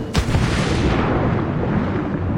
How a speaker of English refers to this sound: Oh, that's nice. So I can still hear the kithara player. I can hear the crew. It's a different perspective. Yeah, we can also hear the cracking of the hull underwater, which is pretty cool.